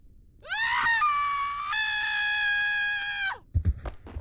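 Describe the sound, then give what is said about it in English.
In a pub, a loud, sustained scream from the floor above holds for about three seconds, its pitch stepping upward, then cuts off and is followed by a couple of dull, heavy thuds. “If you're in the pub, apparently sometimes you hear a scream from the floor above and then you hear a thud.”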